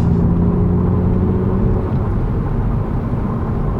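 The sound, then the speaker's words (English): Inside a manual Toyota Supra, the engine drones with a steady rumble and road noise, its low tonal hum fading slightly partway through. No one speaks. “The reason why we've jumped in this one particularly is because it's a manual.”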